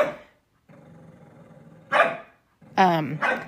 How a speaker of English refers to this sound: Well, my dog's getting ready to go nuts because he's trying to get my other dog to bark and play. So I apologize.